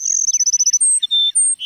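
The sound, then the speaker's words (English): A flock of Cassin's sparrows perched atop a mesquite bush in a South Texas grassland sing clear at sunrise: a quick run of high, sharp chirps gives way to several long, pure whistled notes at shifting pitches, with no voices. “The sun rising over a South Texas grassland finds a flock of sparrows, like these Cassin sparrows we're hearing, perching atop a mesquite bush.”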